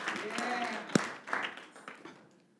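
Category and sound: crowd, clapping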